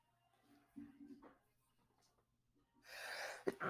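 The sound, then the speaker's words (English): A single sneeze: a soft hitching inhale, a breathy rush of air, then a sharp explosive burst at the very end, with nothing else around it. “oh man, I got to sneeze.”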